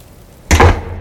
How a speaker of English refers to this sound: I slammed the apartment door behind me, happy to finally be in my safe space.